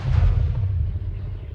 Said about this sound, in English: And then it happens, an explosion shatters my eardrums and fragments fly through the air like metal raindrops falling from hell's sky.